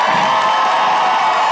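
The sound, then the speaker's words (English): An audience cheers loudly and steadily to vote for which contestant should win, a dense wash of shouting voices that holds at a constant level throughout the short burst. “So what we're going to do is have the audience cheer.”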